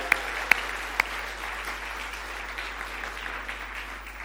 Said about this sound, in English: But we are going to celebrate them with a round of applause on 3. 1, 2, 3.